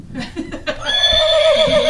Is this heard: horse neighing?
yes